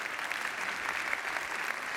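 A crowd applauds steadily, a dense, even wash of many hands clapping at once with no pauses or voices rising above it.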